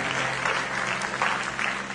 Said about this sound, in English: This is a wonderful family. God, let's give the whole family a great big hand clap of thanksgiving.